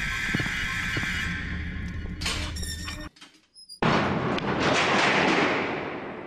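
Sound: door opening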